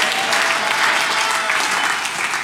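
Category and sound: crowd, audience clapping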